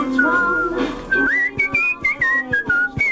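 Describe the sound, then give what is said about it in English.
A man whistles a loud, clear melody, recorded by BBC Three Counties Radio, the pure tone gliding between pitches in a series of short phrases with brief breaths between notes. No one speaks. “He's got a very strong whistle.”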